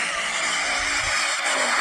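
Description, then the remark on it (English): A pickup truck doing a tire burnout: loud, steady screeching roar of spinning tires with hissing, gritty texture and engine rumble beneath, continuous throughout. “Hey, you want to see me burn out my truck though?”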